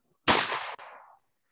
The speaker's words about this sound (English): Oh, that actually got my ear good. And now we have live gunshots on the Icebox podcast. Now I will buy a Happy Meal if y'all can guess what caliber round that was. I'll give y'all a hint. The caliber round was not the caliber of the gun.